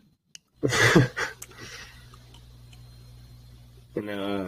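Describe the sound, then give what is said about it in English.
Several quick, wet gulps of water with breathy gasps between them, then a stretch of low steady hum before a voiced, breathy exhale at the end. “He takes little baby boy gulps.”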